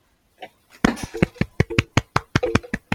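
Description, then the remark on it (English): A single pair of hands claps about a dozen times in a brisk, slightly uneven rhythm, each clap a sharp, fairly loud smack, with a faint voice murmuring briefly underneath. “I'm applauding you.”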